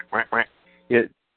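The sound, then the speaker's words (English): Three nasal black duck quacks, imitated by a voice or call, fairly loud: two quick ones, then a pause before the third, giving an uneven, broken cadence. “He can't keep a cadence to save his life most of the time, it sounds like.”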